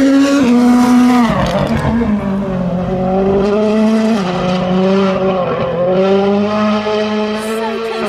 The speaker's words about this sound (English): So one more car to come through. Pick up some hell of a lot of speed going down there.